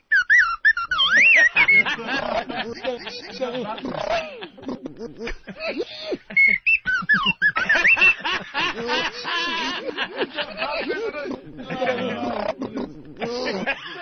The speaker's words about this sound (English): We have to look at him through the window, so I figure we ought to hear him with the soundboard. R2-D2. Two of them talking to each other.